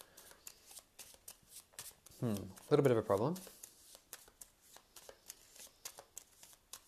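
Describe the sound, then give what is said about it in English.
Rapid, crisp riffling of cards as a man shuffles the discard pile into the encounter deck of a card game, a steady run of soft papery clicks repeating throughout, with a brief stretch of the man talking in the middle. “So I do need to, first of all, shuffle the discard pile into the encounter deck. I'm doing that now.”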